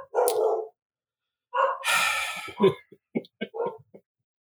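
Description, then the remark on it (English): Dogs barking loudly, a few drawn-out barks followed by a quick run of short, sharp yaps with brief pauses between them. “The dog alarm's going off, Dave.”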